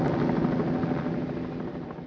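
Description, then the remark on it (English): A search helicopter, searching for a skier trapped in snow after an avalanche in the Swiss Alps, drones steadily overhead, its rotor chopping in a fast rhythmic thrum under a loud engine roar that eases off slightly toward the end, with no voices. “A search helicopter found him after 17 hours.”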